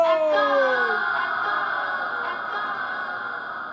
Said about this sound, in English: Why does my echo sound like a woman? Listen to those acoustics